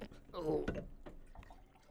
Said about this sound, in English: Do you want me to pour you out another glass?